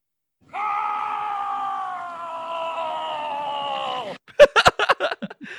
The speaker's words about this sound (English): And then I skied down, and so as I skied down, I started screaming.